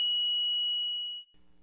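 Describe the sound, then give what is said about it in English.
A steady, high-pitched electronic tone like a fax signal on a phone line drones for about a second, then cuts off into a low, faint buzzing hum. “What it is, I'm not sure, but apparently the phone started giving a kind of fax sound, and I don't have a fax.”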